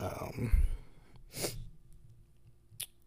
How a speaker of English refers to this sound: Sorry, I had to clear my throat too.